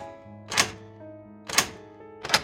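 Three sharp metallic clicks of the tumblers inside a door knob lock being lifted by picks, spaced about a second apart, each a bright snap over a low, steady tonal hum. No one speaks.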